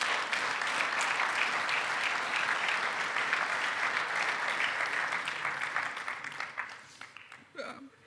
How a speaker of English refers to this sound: So get your hands out. And I want you to applaud our kids pastor,